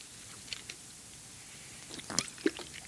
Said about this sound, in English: You have a sip of water if you don't mind.